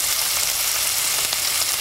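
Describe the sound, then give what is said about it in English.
Steady, loud sizzling and crackling of a placenta frying in a hot oil-covered pan, a dense hiss with scattered pops running throughout, with no voices. “It is so strange to see a part of yourself slapped into an oil-covered sizzling pan like a piece of bacon.”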